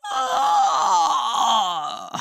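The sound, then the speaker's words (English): A voice acts out an old man's big, drawn-out yawn as he wakes up and stretches, a long groaning sound that wavers in pitch for about two seconds before trailing off with a small breathy finish. “The next day, the old man woke up, stretched, and yawned.”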